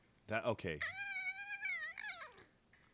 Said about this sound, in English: That's a fox.